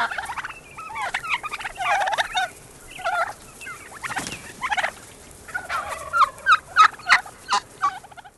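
A wild turkey gobbles repeatedly, a rapid, rattling burst of throaty calls in quick succession, clear, with a few sharp bird notes near the end and no talking.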